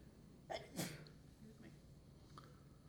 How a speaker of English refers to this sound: Bless you.